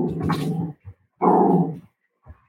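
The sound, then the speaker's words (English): A female dog lets out two drawn-out, growly barks, separated by a brief pause, with a couple of short, soft grunts trailing between and after them. No one talks. “She's going to bark.”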